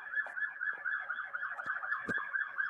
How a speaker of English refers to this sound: Please hold for sirens.